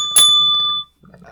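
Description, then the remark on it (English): A small bell is struck once, loud, giving a bright metallic ding that rings out and fades over most of a second. Faint low background noise follows. “Is that the bell ringing?”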